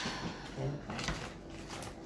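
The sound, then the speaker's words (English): A folding chair is opened for a grandmother to sit on, with a few scraping, clunking bursts of metal and fabric over about two seconds, while faint voices murmur in the background. “Open the chair.”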